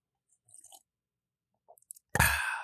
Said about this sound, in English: And then, for those of you not watching on YouTube, I just sipped my water, and that's basically all Caretaker does.